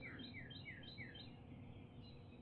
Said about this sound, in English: Oh, I hear a cardinal also. Yep. Male cardinal. I always think they sound like a siren when they sing. Song sparrow, cardinal, the robins in the background.